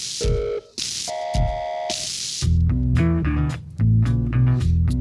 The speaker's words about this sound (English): I like how he uses like phone sounds and shit. Yeah, the modem's busy. Put that in the song.